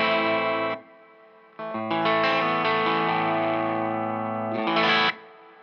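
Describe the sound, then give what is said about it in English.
An electric guitar played through the reverb (right) channel of a Strymon Flint two-channel pedal with the mix set very low: a bright chord rings out and stops, then after a short pause a long, layered chord sustains with a washy tail before a final strum cuts off. “And then I will turn on the right side, which is reverb.”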